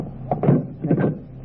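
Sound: door being closed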